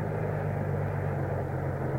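A steady, low engine drone rumbles with no change in pitch as a car is driven slowly at a crawl, about 50 or 60 feet from the place it is heading to; no one speaks.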